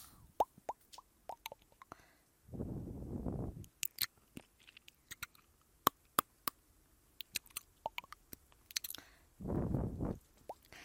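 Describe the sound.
Wet mouth sounds of ASMR ear eating for relaxation and sleep: scattered sharp clicks, pops and smacks, broken by two longer soft breathy whooshes, with no talking.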